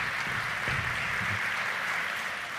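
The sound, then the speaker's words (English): A church crowd on a Sunday bursts into steady applause celebrating the overturn of Roe v. Wade, dense overlapping claps forming a continuous bright wash of sound throughout, with no voices standing out. “And yes, you can clap.”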